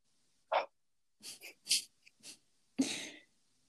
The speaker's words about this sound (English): It's a shame that you can hear my heavy breathing, though.